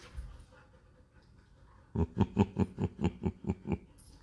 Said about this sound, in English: But this is when they're happiest. When I look at those dogs playing with their teeth bared and their freaking necks all soaking wet because they're biting each other's necks, jumping on each other's backs, trying to get dominance.